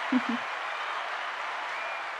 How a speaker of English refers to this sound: Applause one more time, just for good measure.